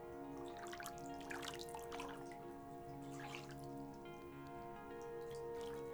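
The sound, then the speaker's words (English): Steady running water pours, splashes and trickles into a bathtub, a continuous patter with bright droplet sounds and a faint tonal hum beneath, no voices present. “Tune into the sound of the water pouring into the tub.”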